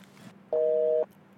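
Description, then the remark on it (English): A single half-second burst of a regular (not fast) telephone busy signal on a call to a landline, a steady, buzzy two-tone hum starting and stopping abruptly, loud and clear against a faint background hiss with no voices. “Oh, because it sounded like it was a fast busy, which would be like a bad thing. That's a regular busy.”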